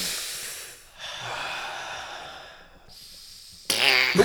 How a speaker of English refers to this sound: I like to do some breathing exercises.